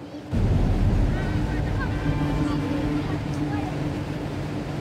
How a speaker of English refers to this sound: Luckily, the locals look after each other around here, and a digger working nearby has come to lend a hand. The vehicle is free and the people are safe